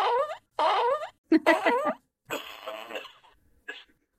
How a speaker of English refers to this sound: I think it's worth at least four farts on the stinkometer.